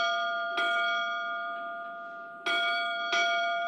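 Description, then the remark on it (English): The bell of a 100-foot yacht drifting on Alabama's Hullabaloo River rings out clearly in the morning, struck once and then twice in quick succession, each clang leaving a bright, sustained metallic ring hanging in the air. No voices. “In the morning, the yacht's bell struck 8.”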